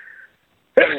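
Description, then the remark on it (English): A single sharp, loud sneeze bursts out after a brief breathy intake and a moment of silence. “Bless you.”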